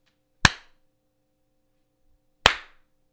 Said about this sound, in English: clap really quick, hon.